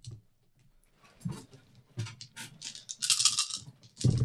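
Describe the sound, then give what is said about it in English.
Seven dice rattling and clattering onto a hard surface, fairly loud, with a busy burst of clicks and a final knock; no voices. “And the other one is seven dice.”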